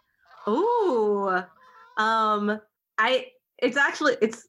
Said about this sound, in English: Is this some real goose?